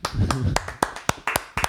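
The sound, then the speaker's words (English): A handful of sharp, crisp hand claps, around eight or nine, in a loose uneven rhythm with a couple of quick pairs, over a brief low voice murmur at the start. “Give it a round of applause. Put some claps here. Clapping.”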